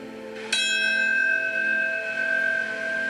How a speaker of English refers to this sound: 20 years later, a pilgrimage back to hallowed ground, haunting sounds in a solemn ceremony, bells toll.